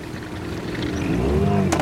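A motorboat engine roars steadily as the boat speeds over choppy water, a churning wash of water beneath its droning pitch that rises and falls, with a brief splashy burst near the end.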